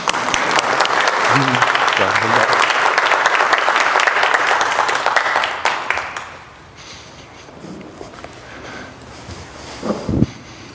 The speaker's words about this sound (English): Welcome to Memorial. Thank you. Welcome. And we don't clap much in traditional, but y'all can clap now.